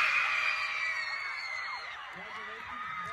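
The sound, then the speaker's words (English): A large crowd of girls at a 2021 high school homecoming in Columbia, Missouri screams and cheers at full volume as a boy is announced homecoming queen, a dense sustained wall of high-pitched shrieks and whoops that stays loud throughout, with a few voices standing out near the end. “You basically can hear every girl screaming her guts out.”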